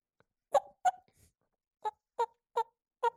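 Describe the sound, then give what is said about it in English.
Soft hen turkey tree yelps imitating a hen coming out of the tree: six short, nasal, mid-pitched notes, a quick pair followed by a pause and then four evenly spaced yelps, with no talking. “Little tree yelps, and then they get a little bit more excited, start hopping.”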